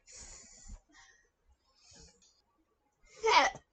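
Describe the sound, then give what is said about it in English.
A sudden, loud hiccup bursts out near the end, following a few soft, breathy vocal noises and quiet stretches. No words are spoken. “The fuck was that? Oh, hiccup.”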